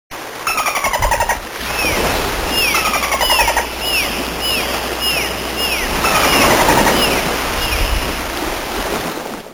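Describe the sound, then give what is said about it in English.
Dolphins chatter in rapid buzzing click bursts mixed with a series of short, high, arching whistles, over a steady wash of water noise. No one speaks. “So that chattering sound is, if you've ever watched the TV show Flipper from the 1970s, they use that one constantly.”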